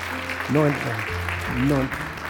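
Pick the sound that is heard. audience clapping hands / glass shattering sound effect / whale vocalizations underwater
audience clapping hands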